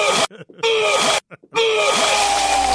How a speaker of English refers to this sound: playing sound effects of my retching